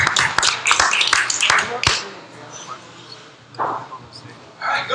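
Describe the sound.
A short burst of scattered hand clapping from a small group, sharp and close for about two seconds, then fading into room murmur with a few faint voices.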